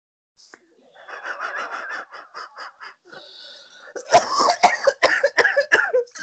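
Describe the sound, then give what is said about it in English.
A harsh coughing fit from someone getting over the flu: a run of rapid rasping coughs, then a brief wheezy breath before a louder burst of sharp, hacking coughs, with no talking. “Shouldn't tell jokes like that when you're so coughing.”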